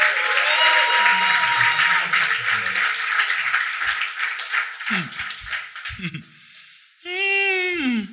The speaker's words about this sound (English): Celebrate God with a clap.